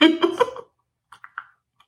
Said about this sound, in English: I'm going to sip my tea.